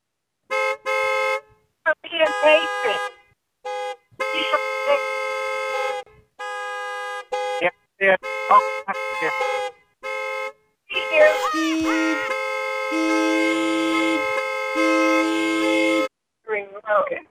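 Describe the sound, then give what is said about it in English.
A car horn honks over and over in short, loud blasts, then finishes with one long sustained blare, with brief pauses between honks and faint voices mixed in. The horn is sounded so a driver who took the wrong driveway can find the car, which is at a library next to the book pickup drive-thru. “Keep honking. Honk more.”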